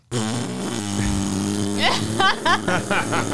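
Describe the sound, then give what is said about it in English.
A person imitates a drone with their voice, making a low, steady, raspy buzz that keeps going for about three seconds and breaks into wavering, swooping pulses toward the end. “Yeah, that wasn't gas. That was supposed to be a drone.”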